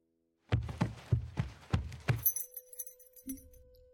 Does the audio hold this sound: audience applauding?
no